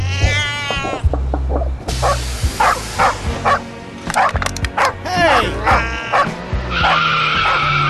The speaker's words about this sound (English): I threw the cat. It went into the back window, and the driver hit a pole, and it blew up the transformer, and that's what happened.